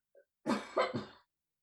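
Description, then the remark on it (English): A small throat-clearing sound is followed by a quick burst of three raspy coughs, moderately loud, with no talking around it. “No, I've been coughing all this week and I don't even understand, because it's too cold for my usual allergens to be bothering me.”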